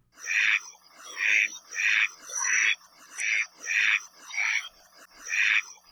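A Hawaiian duck (Kula Maoli), a duck species endemic to Hawaii, gives a steady run of about eight raspy quacks, each roughly half a second long and evenly spaced, loud and nasal with no voices.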